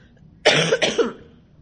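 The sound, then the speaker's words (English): A harsh cough: one forceful burst breaking into two or three quick rough hacks in a row, loud and dry, with no talking around it. “And so I like have this awful cough, which is just wonderful.”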